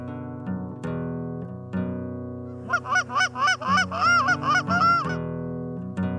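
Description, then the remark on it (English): A goose call honks loudly during a goose calling lesson: a few spaced, drawn-out honks, then a quick, rhythmic run of sharp clucking honks before it settles into long tones again. No one speaks. “Here is a goose calling lesson”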